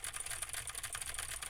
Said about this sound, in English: Now I'm typing on a keyboard with Gateron Blue switches to see how much of my voice versus how much of the keyboard it picks up.